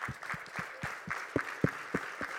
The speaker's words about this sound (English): And I think we need to give them some applause, don't you? So let's stand up and let's give an applause to those who keep going, who are standing faithful. Let's do it.